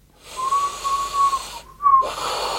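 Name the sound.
person trying to whistle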